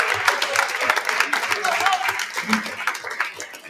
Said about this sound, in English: So can we please just clap it up for Coach one more time? Thank you.